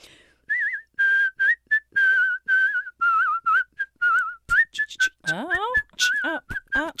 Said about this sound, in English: Like everything good was derived from your whistle. Exactly. I'm like the font of whistling knowledge.